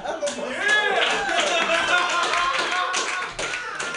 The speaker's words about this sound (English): Round of applause for teeth and the vagina.